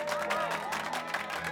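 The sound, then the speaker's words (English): A crowd in a courtroom applauds and cheers at once after the jury foreman announces Charles Guiteau guilty as charged on January 26, 1882: a dense, steady wash of clapping and shouting voices that holds at a fairly even level throughout, with no single voice standing out. “The court erupted in applause and cheers.”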